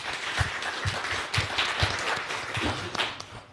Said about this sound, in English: I'd like you to give a round of applause to the two panelists.